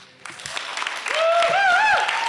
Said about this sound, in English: Alrighty, you guys. So you guys get to choose. A round of applause.